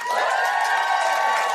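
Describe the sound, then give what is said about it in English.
A crowd cheers loudly and continuously to show they will buy Yomi Adegoke's book The List, a dense wash of voices and whoops holding steady at full volume for the whole moment without pause. “Just give us a cheer if you're going to buy the list.”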